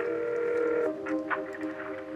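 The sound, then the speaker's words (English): Steady electronic telephone tones of a call being dialed, one held tone shifting to another partway through, with a few short, softer beeps afterward; no voices. “Do you want to hear a really romantic phone call?”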